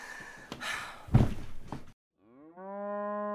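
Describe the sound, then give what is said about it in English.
A cow gives a rough, breathy snort, then after a short pause lets out a loud, sustained moo that swells and holds steady. “Don't even think about it, cow.”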